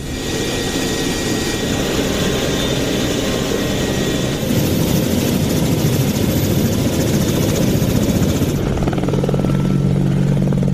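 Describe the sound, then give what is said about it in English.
A military helicopter's engine and rotor roar loudly and steadily, a dense continuous drone that shifts toward a deeper, humming tone near the end. No one speaks. “Tasking, we carry out pre-planned operations throughout the area, which are side by side with the ground forces, as well as the other helicopters in the Joint Aviation Group in Afghanistan.”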